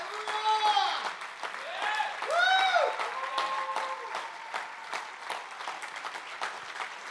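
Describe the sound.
An audience breaks into sustained, dense applause for Jesus, with excited voices whooping and calling out over the clapping during the first few seconds before the steady clapping carries on alone.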